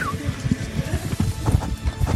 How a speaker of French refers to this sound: Sauf qu'est-ce qu'on entend ? On entend piaffer.